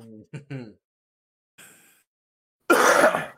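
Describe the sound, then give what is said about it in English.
A few short throaty grunts and a breathy rasp lead into one loud, harsh cough that bursts out at the end. “Gotta throw in a cough for good measure as well.”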